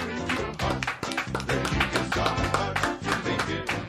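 A quick, steady run of sharp hand claps, bright and fairly loud, repeating several times a second over sustained low tones, with no one speaking.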